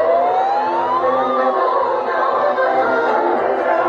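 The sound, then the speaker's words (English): A siren wails with a rising then falling pitch sweep, loud, over a dense wash of street noise and crowd rumble, on the streets of San Francisco during protests around the fortified Moscone Center. “Sirens wailing, helicopters circling, protesters taking to the streets, surrounding the fortified Moscone Center and demonstrating over a variety of different issues,”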